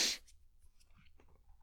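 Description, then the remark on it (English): A short, stifled sneeze bursts out at the start, a muffled airy puff held back mid-release by a person sitting and recording, followed by faint rustling and quiet background hum. “I probably held that sneeze in out of instinct because I was sitting here recording, right, and didn't quite want to like do the whole thing and like slam the pause button.”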